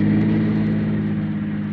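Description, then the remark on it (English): A car coming down a hill drones, a loud, steady low rumble with a constant hum that holds evenly for the whole moment, with no voices over it. “When I saw the headlights of a car coming down the hill, I ducked behind the tree.”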